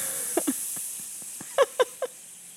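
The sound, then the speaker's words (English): A voice imitates the hiss of a steam iron pressed onto linen napkins: a soft, steady breathy hiss running throughout, broken by a few short, quiet voiced chirps. “And then I put the iron and it's like ASMR and it goes. Tss.”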